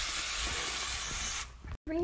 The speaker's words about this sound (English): Spray 3 8-inch round cake pans with cooking spray.